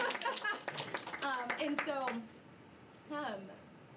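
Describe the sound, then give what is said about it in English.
A short burst of audience clapping mixed with excited voices, applauding the news that every life group had a friend this year, loudest at the start and fading within about two seconds, followed by a brief lone vocal call. “Yes, you can clap.”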